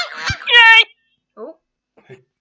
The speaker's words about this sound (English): Who was that buzz first? I heard geese and I heard a yay. I think the yay was first.